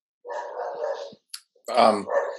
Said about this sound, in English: Do you hear that barking, unfortunately? Okay. It's okay. We like dogs.